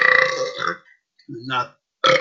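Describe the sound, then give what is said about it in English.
A series of loud, deep burps after drinking sparkling water, in quick succession, the first long and rumbling, followed by a shorter croaky one after a brief pause and a final abrupt belch. “That sparkling water will do that.”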